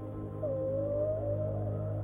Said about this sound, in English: The ocean is peaceful, and the only noise that can be heard distinctly is the whale's song. His harmonies grow louder and louder.